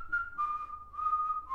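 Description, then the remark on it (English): Someone whistles a slow, eerie tune, the clear tone sliding between a few sustained notes with no talking. “What are you so good at whistling for?”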